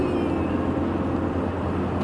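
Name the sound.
truck passing by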